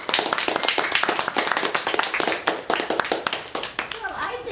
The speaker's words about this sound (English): A big round of applause.